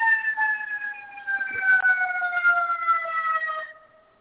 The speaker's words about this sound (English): I don't know what that was, but it sounded like an ambulance.